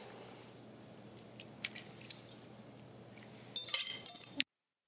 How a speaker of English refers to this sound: Now I'll just pour in the dressing.